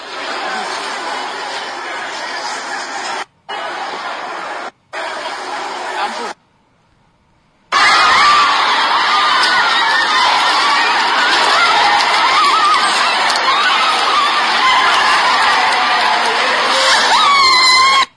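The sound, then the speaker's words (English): A crowd of protesting students on the campus of the KNUST on 23rd September roars and shouts, a dense, loud wall of voices with occasional screams; after a few abrupt cuts and a brief silence early on, it surges back steadily. “So this happened on 23rd September, on the campus of the KNUST, students were protesting.”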